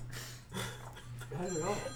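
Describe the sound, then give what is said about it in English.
A phone ringtone plays as an incoming call during a show streamed on IG Live and Facebook Live, with bright electronic tones and a steady low hum running through it while people talk over the ringing; the call is declined. “Cole, who? Cole, 42.19. Yeah, nah, decline it.”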